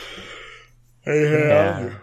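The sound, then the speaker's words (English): A person yawns: a long, breathy intake of air followed by a drawn-out voiced groan that wavers in pitch before trailing off, fairly loud and with no speech over it. “Sorry for yawning in your ear, audience.”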